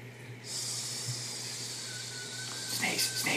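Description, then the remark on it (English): A person imitates snakes with a long, steady hissing sound, fairly loud, held for about three seconds with a few breathy, sputtering bursts toward the end. “Snakes.”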